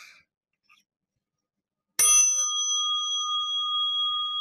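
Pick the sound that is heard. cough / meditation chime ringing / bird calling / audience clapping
meditation chime ringing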